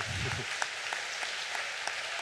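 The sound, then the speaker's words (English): An audience applauds steadily, a dense wash of many hands clapping at an even level throughout, with a few sharper individual claps standing out. “Could clap for her?”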